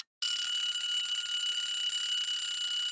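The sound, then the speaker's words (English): A shrill, high-pitched electronic quiz timer alarm starts abruptly after a brief silence and rings continuously at steady loudness, signalling that a contestant's time has run out. “You didn't beat Rocky's clock!”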